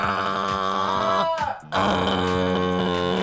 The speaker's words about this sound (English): Oh, Mike, that's the sound of my toothbrush.